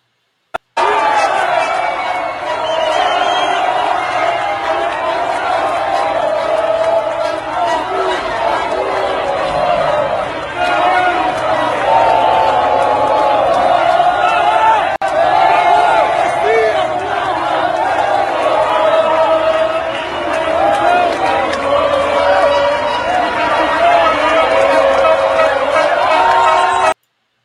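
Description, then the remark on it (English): A massive crowd roars with a dense, continuous wash of many voices, holding loud and steady for nearly half a minute, with scattered shouts rising above the general chatter. The crowd is gathered outside army bases and barracks in Brazil, calling on the military to intervene. “The text on this next one says, massive crowds are gathering outside of army bases and barracks all over Brazil, calling on the military to intervene.”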